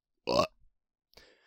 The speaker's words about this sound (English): Okay, alright, good burp.